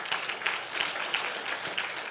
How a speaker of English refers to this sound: Come on, can we get clapped just a little bit better?